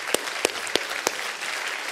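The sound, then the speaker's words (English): An audience claps in a dense, steady wash of many hands, with four sharp, louder individual claps standing out in the first second before the applause continues evenly. “And over the last, you can clap for that.”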